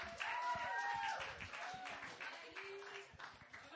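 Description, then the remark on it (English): An audience claps steadily throughout to welcome a man, a dense patter of hand claps at moderate volume, with a few high whistles or cheers rising over it early on. “Let's welcome with him, welcome him with a round of applause.”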